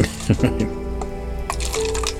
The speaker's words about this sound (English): I'm not even going to drink all that you just poured.